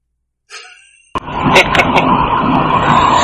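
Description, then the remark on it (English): A brief squeaky, breathy sound is followed by a sudden burst as a car engine catches, then settles into a loud, steady running roar. “I'm not sure who, because you can't see the car, starts the car already”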